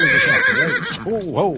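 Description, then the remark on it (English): A horse, Rachel, suffering from colic, whinnies loudly, its high, quavering call rising and falling in several wavering bursts before trailing off into a couple of lower snorting cries. “I didn't think colic in a horse could get so bad.”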